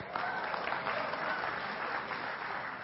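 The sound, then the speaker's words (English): An audience clapping to show who saw last night's game, a dense, steady wash of applause that holds at an even level for a few seconds with a faint murmur of crowd beneath it. “Anybody, by applause, see the game last night?”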